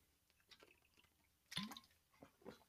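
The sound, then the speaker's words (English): Someone quietly drinking a glass of water: soft wet sips and mouth clicks, with one louder gulp partway through. No one speaks. “I'll give you a minute to get there, and I'll grab a drink of water.”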